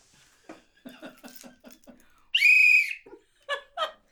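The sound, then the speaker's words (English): A single loud, shrill whistle blast lasting about half a second cuts in sharply between short bursts of voices that sound like talking and laughter. “Please blow the whistle.”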